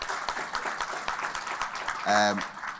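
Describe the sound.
A crowd claps steadily, a dense crackle of many hands that holds at an even level, with a short voiced cheer rising out of it near the end.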